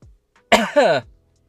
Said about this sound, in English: That's just a well-timed cough. Don't think too hard about it.